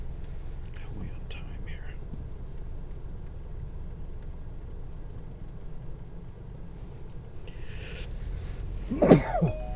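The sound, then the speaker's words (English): A single sharp sneeze bursts out near the end, following several seconds of low, steady rumble like a car interior, with faint breathy sounds earlier on. “Sorry for the sneeze.”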